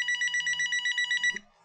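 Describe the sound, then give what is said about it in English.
A telephone rings during dinner with a rapid, warbling electronic trill of quick repeated pulses for just over a second, then cuts off. It is clear, with no voices. “And about a week later, during dinner, the phone rings!”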